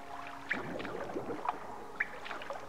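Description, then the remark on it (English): Sloshing, gurgling water strokes with a few sharp splashy bursts at a loose, uneven rhythm, as a video game character swims through a shallow underwater passage. No one speaks. “So I'm swimming through the underwater passage.”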